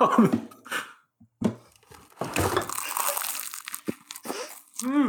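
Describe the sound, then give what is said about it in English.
Crisp crunching and crackling of a flaky almond croissant being bitten and chewed, in several dense bursts, with a short vocal murmur at the very end. “Is that – can you hear the crisp and crunch?”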